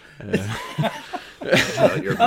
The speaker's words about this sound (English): I like how that was a legit cough.